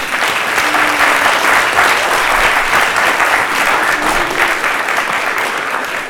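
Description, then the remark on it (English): A crowd applauds a robotic cake icer they have just built, clapping steadily for about six seconds, a dense, even patter of many hands at a loud, sustained level with no voices standing out. “So stop, and we'll give the robot a round of applause.”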